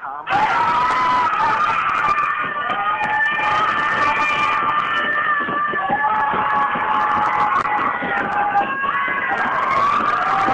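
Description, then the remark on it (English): Many voices scream as loud as they can, continuously for about ten seconds, high-pitched and overlapping, with a muffled, narrow sound as heard over a phone line, the phone having been set down. “Set it down and scream as loud as you can.”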